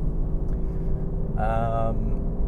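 A car engine rumbles low and loud throughout while driving on dry roads in warm, dry weather, with a brief strained, whining rev rising over the rough drone midway through.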